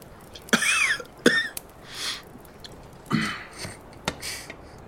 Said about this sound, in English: coughs